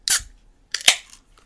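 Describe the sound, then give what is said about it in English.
The cap of a bottle of super dark 8% alcohol beer is popped off: one sharp metallic click, a short pause, then a louder crisp pop trailing into a brief airy hiss. No voices. “All right. I'm going to pop this top.”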